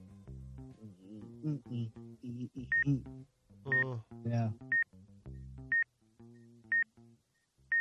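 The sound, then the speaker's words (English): A string of about six short keypad dialing beeps, evenly spaced roughly a second apart, sounding sharp and high over a booming bass-heavy music track, with a brief voice at one point. “That beep sounds so harsh mixed with the bass line.”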